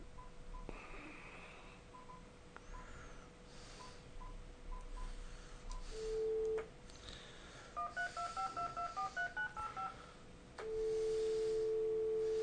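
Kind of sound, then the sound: signal or alarm, telephone keypad dialing tones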